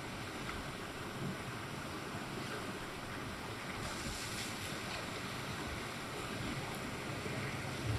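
Steady ocean surf rolls and washes continuously, a broad soft rushing with gentle swells rising and falling, heard alone without any voices.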